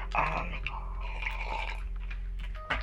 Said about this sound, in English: I need to sip my wine.